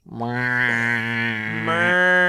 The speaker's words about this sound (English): I'm going to shake mine right now. Mine is one of those little things that when you turn it over sounds like a cow.